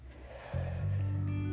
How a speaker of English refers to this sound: Yawn. It feels so good to just yawn sometimes and release.